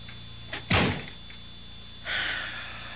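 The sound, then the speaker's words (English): A door swings and shuts with a solid thud, followed a moment later by a softer scraping rustle, with no voices. “If you want me to tell you what he said, shut the door.”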